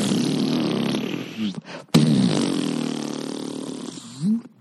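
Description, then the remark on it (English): A voice imitates the wobbly boing of a springy door stopper behind a door: two long, buzzy vibrating bursts with a short break between, each ending in a quick rising-and-falling pitch bend. “What's that thing behind the door? The door stopper from that thing you played with before there was the internet?”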